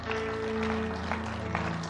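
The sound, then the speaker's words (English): An audience claps their hands together as a hand clap of praise to the Lord, in a dense, steady patter with a few sharper bursts, over a sustained, low musical drone; no one speaks. “In Jesus' name, won't we give the Lord a hand clap of praise?”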